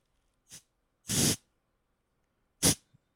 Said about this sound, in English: She doesn't like compressed air. Nope. But the sound of compressed sprayer. Air.